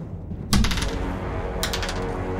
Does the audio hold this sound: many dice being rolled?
yes